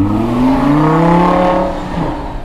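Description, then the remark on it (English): A car engine revs, its pitch climbing steadily then easing off, loud and continuous with a throaty, rising whine over a low rumble. “It's a lot of background. No, these cars are amazing. There are a lot of really nice cars.”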